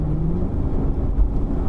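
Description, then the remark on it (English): A car engine rumbles loudly as the car speeds up on a road clear of traffic, approaching Farnborough: a steady low drone mixed with road noise, its pitch barely changing over the short stretch, with no voices. “Hang on, we can go a bit here.”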